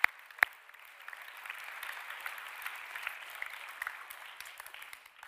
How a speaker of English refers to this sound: Matter of fact, just somebody clap your hands just because you ain't done it all day long. Just clap your hands.